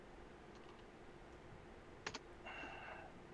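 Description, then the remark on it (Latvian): Two quick, soft keystrokes on a computer keyboard, close together, as someone types the word Xiaomi, followed by a faint brief hum against quiet room noise; nobody speaks. “Tāpēc mēs rakstām Xiaomi, Mi rakstām.”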